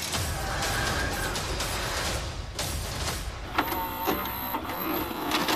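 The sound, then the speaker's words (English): A continuous mechanical grinding of a saw being used four or five pods over runs steadily throughout with a harsh, buzzy texture and a few brief scraping bursts near the end; no one speaks. “I don't know if you can hear that, but if you listen, like, really, really, really close, I think you can hear they're using a saw, like, four or five pods over”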